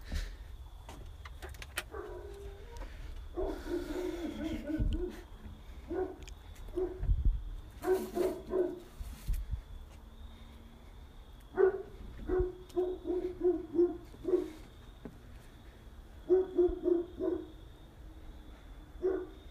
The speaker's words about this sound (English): Dogs barking.